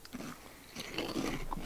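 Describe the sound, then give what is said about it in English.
Crunching of a crispy cinnamon snack, a bite followed by several brittle, crackly chews in quick succession, loud, with no talking. “They taste like Cinnamon Toast Crunch. These are significantly crunchy.”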